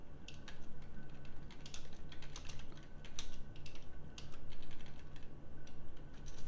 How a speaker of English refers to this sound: Alright. I hope everyone enjoys that typing. Tip tap.